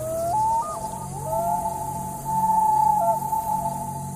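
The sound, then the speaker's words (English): A common loon calls in the woods at night in a long, wavering wail, its clear mid-pitched tone holding and stepping up and down in pitch, over a steady low hum and a high insect-like hiss of bugs and frogs. “As I laid there in total darkness, I listened to the sound of the woods. I wanted to find comfort in them like I had before, but instead I was hyper-focused on them, obsessive.”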